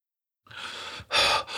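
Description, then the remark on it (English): A breathy inhale followed by a sharp, louder gasp and a short trailing breath, sounding winded and out of breath, with no talking. “"I don't understand what you mean at all," gasped a breathless Dirty Gus.”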